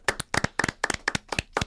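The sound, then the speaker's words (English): A short round of applause for baseball pitcher Matt Harvey: a dozen or so sharp, crisp hand claps falling in loose pairs, like two people clapping together, fairly loud with no talking. “Can we get a round of applause for Matt Harvey, though?”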